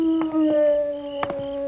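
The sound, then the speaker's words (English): On a dark night, a wolf lets out one long, sustained howl that holds a steady, slightly wavering pitch throughout, with a few soft knocking taps underneath and no talking. “He's heading this way, Jingle. Get the horses. Maybe we can catch ourselves a wolf.”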